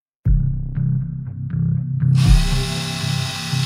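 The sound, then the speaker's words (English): An electric jigsaw runs loud with a steady, buzzing motor drone, then turns harsher and hissier partway through as the blade bites in. No voices. “One of them had a hammer in his hands. The other held an electric jigsaw.”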